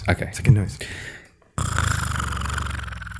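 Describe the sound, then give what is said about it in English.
A voice imitates snoring: a brief vocal burst, a short pause, then a long, steady, low rattling drone that buzzes with a rapid pulse for nearly two seconds. “That was sleeping. Just snoring.”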